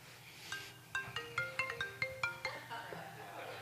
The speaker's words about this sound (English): You guys should really honor who's speaking and silence those cell phones. Who in the world's calling me at 12:20 on a Sunday? Is it you? Are you messing with me right now?